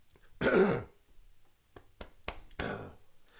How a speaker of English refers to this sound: had to clear his throat.